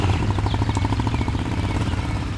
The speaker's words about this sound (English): And the stage is set in abandoned villages in the Greek countryside. Musicians ex machina ride their own machines, their motorcycles.